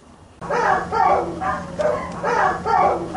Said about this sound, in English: That is not barking. You know, that's crying. Moaning, you know. No, no. What kind of dog? I never see any dog do this.